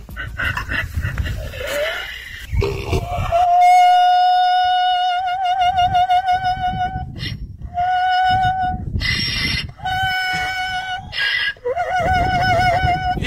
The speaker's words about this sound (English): And I'm talking about Opera Donkey. I debuted the vocal stylings of Opera Donkey during the What Are You Kidding Me stories today. This is legit a donkey. When this guy is walking by it, listen to this beauty.